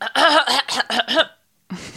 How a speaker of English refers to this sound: Let her just clear her throat first. Okay, sorry, I'm so stuffy right now.